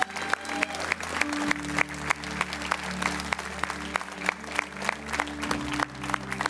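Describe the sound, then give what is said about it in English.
An audience claps for three people who responded to an altar call in Montgomeryville, a steady, even rhythm of sharp claps repeating about three times a second over a sustained low humming tone, with no talking. “Would you clap with me?”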